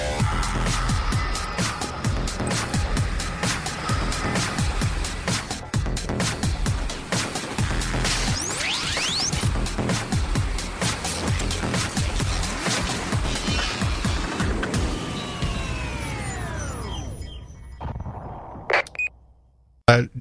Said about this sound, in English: 5, 4, 3, 2, 1, 0. All engines running. Commit. Liftoff.